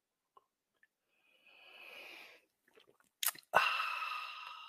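A soft slurping sip, then a couple of small wet clicks and a sharp swallow, followed by a breathy, satisfied exhale. No one speaks.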